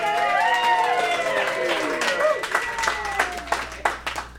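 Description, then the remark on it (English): A live audience at a live recording claps and cheers for themselves, with whoops and shouting voices overlapping as scattered, uneven handclaps build and continue throughout. “Also, thanks to our live audience, go ahead and clap for yourselves.”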